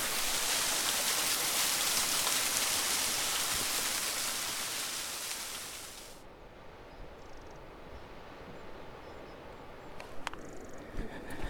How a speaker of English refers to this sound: I've reached Hollow Brook, next to a waterfall.